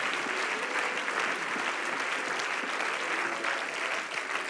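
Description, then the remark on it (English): A crowd claps steadily and loudly in praise to the Lord, many hands striking in a dense, continuous patter with no talking, sustained evenly throughout. “And if you're believing for God to do something tonight, now in your situation, let's clap our hands one more time unto the Lord and give him praise in this place tonight.”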